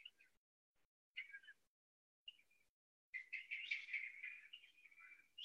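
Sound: small birds chirping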